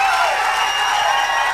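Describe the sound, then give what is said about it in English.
A pro-Rubio rally crowd at the New Hampshire primary cheers loudly and steadily, a dense wash of voices and clapping that holds at an even level throughout, with no single voice standing out. “Well, meanwhile, they're cheering that he will never like malfunction like an idiot again.”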